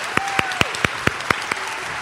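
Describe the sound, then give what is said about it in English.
An audience applauds steadily to welcome a special guest, Bridget Butler, known as the Bird Diva, with a few sharp handclaps popping out in a regular rhythm above the dense wash of clapping. No one speaks. “Could you give a great big round of applause for our friend?”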